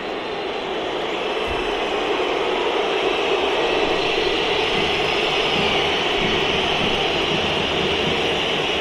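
A stadium crowd, not yet full, almost an hour before kickoff, keeps up a steady, dense roar. Light whistling, aimed at Manchester United goalkeepers and coaches who have come out to warm up, is scattered faintly through it. Nobody speaks over it.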